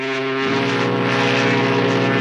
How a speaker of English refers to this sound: It's been way too long since we've heard that fog horn.